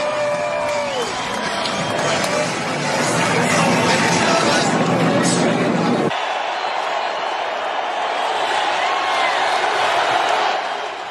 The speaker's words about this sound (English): Remember, these moments at the national championship football game and the Daytona 500, with millions and millions watching, the packed stadiums broke into uproarious applause for their president.